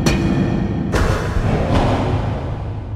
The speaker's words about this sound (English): Back at the prison, two correctional officers bang their baton across the cell wall,